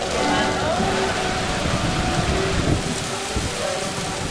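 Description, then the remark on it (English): A heavy tropical downpour in Paraguay roars steadily, a dense hiss of rain pounding surfaces without letup, with indistinct voices faintly buried beneath it. “The music can't compete with the downpour, but there is refuge in a classroom.”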